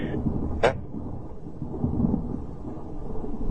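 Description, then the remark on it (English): A deep, rolling rumble of thunder from a lightning storm outside fills the whole stretch, steady and muffled, with a brief sharper crack near the start and no voices. “Got a lot of lightning going on outside. There's a storm going on there.”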